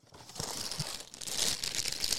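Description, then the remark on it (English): A bag of Cheez-Its snack crackers crinkles steadily for a couple of seconds, a crisp, bright rustling with a few sharper crackles mixed in, with no voices. “I'm going to have some more Cheez-Its.”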